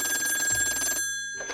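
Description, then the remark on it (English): A telephone rings late one evening with a rapid, trilling bell for about a second, falls silent briefly, then starts ringing again; fairly loud, with no voices. “So I was worried when she called late one evening.”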